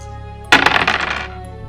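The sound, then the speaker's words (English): Five dice clatter onto a hard table in a quick burst of sharp clicks and rattles, bouncing and settling within under a second, fairly loud with no voices. “Two more positive dice. Ooh, that's all my positive dice actually. All right, here we go.”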